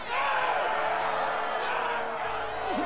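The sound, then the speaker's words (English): A dense, roaring crowd shouts and yells all at once in a continuous, agitated wall of voices, steady and loud throughout with no single speaker standing out, in a dramatized scene from the History Channel show Nightfall where Knights Templar are about to be burned at the stake by King Philip of France. “As you can hear, the crowd is frenzied.”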